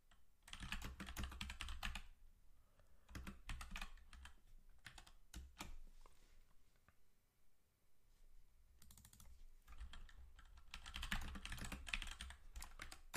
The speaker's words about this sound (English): Typing something in.